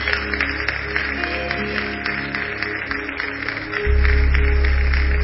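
An audience claps for Jesus after a prayer, a dense, fast patter of many hands with no voices on top, while a low droning hum swells louder near the end.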